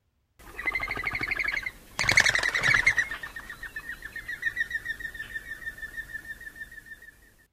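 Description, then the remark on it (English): A mourning dove's wing whirl: a fluttering, high whistling twitter of rapid pulses, broken by a loud burst of flapping, then trailing off in a long, fading whistle. No one speaks. “A dove's wing whirl is an example of a bird sound that can be used for identification that is not a song or a call.”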